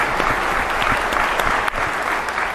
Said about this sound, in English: So first of all, give yourselves a round of applause for appearing here now.